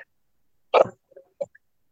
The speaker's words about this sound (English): I'm going to cough here.